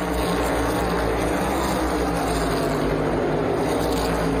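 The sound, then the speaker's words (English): Race cars speed past during a race in a loud, steady roar of engines that drones on without letup, a dense mechanical rumble with a whining edge and no voices over it. “Cars racing by, it's awesome.”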